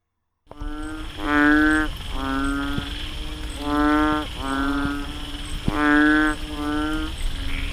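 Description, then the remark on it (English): A painted frog (Kaloula pulchra) gives six loud, drawn-out, buzzy moaning calls in three tight pairs, each note rich and nasal, against a steady background hiss. “Is that actually Kalula Poultra? Yeah, Kalula Poultra, the painted frog.”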